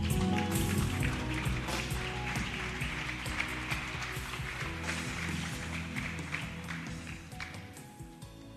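A crowd claps steadily for several seconds as a clap offering to the Lord, a dense patter of many hands at a fairly even loudness, with faint background tones underneath.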